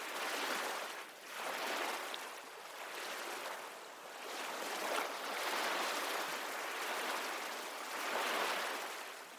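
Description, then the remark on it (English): Ocean waves wash in and recede in a steady rhythm, broad hissing surges swelling and fading every couple of seconds, continuous with no voices present. “Deep Relaxation, Soothing Ocean Waves”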